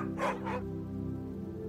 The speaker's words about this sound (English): The dogs bark with great adulation. The woman waits, steps closer to the sack. The dogs stop.